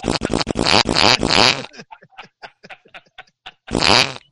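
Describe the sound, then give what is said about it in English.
Loud, rapid fart sounds, a fart called the 'Travis Pastrana on Rye', burst out repeatedly like a motocross engine revving, then sputter into scattered short blasts before one more loud rasping burst at the end. No one speaks. “So if you do it multiple times, it sounds like you're revving up an engine, right?”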